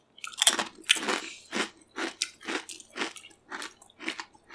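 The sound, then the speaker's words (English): Loud crunching and biting on something hard, like bone, in a steady run of about ten sharp chews, each a brittle crackling burst with brief pauses between. “Got a kneecap stuck between the teeth.”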